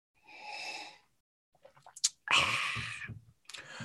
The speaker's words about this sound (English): A sip.